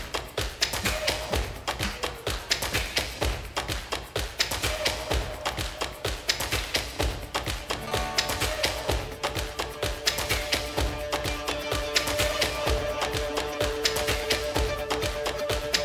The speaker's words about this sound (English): Here we go. Yep, come on. You can stomp your feet.